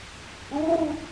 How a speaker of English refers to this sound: Just a hoot owl hooting.